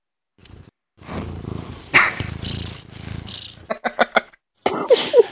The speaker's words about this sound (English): This cat loves me more than anything in the world.